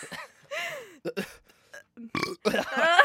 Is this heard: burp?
yes